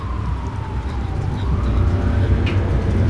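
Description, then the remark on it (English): A distant police siren wails in a slow rising and falling tone over a steady low rumble of traffic, growing slightly louder toward the end. “the sirens in the distance increased her paranoia”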